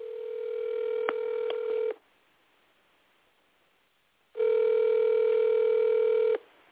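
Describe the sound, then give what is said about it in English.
An outgoing phone call ringing on the line: two steady ringback tones, each about two seconds long, separated by a pause, clear and fairly loud with a couple of faint clicks and no talking. “She was celebrating her birthday, so she ain't even answering the phone.”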